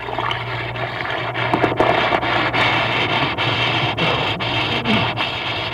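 A steady, dense fizzing hiss of an Alka-Seltzer tablet dissolving in water, with rapid crackling bubbles and occasional brief pops, holding an even loudness for several seconds with no voices.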